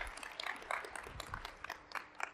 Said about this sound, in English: Thank you so much. You were super. Let's give everybody a round of hand, round of applause.